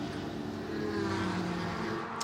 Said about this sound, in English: And I think they've just done the left side. And off goes the car. And Nola Sport back in the race.